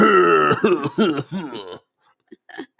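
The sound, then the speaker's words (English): Loud throat clearing with a few rough voiced coughs in quick succession, then a short pause and two fainter little coughs at the end, from a person whose throat was irritated by laughing. “When I laughed earlier, I irritated my throat. Now I have like a little bit of a cough.”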